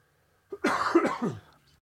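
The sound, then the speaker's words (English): A single harsh, rasping cough lasting about a second with a throaty, broken texture before trailing off into quiet. “I'm sorry for the cough, guys.”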